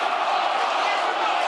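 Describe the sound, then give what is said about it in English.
A large football crowd at a Millwall versus Gillingham match roars in a steady, dense wall of shouting and jeering voices, wanting a player sent off, loud and unbroken throughout with no pauses or single standout calls. “Crowd want him off.”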